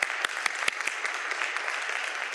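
An audience breaks into steady applause, a dense wash of many hands clapping, with a few sharper individual claps standing out near the start before the sound settles into an even roar.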